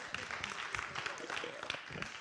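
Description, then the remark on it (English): A lone pair of hands claps in a loose, uneven rhythm, the sharp slaps moderately loud over a steady wash of background voices. “Don't worry, man, you can clap, it's okay. Even if you're by yourself, God bless you, you know.”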